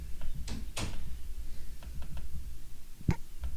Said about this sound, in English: Can you shut the door? Thank you.